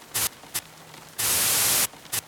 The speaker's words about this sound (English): It sounds more like white noise when it's breaking in and out.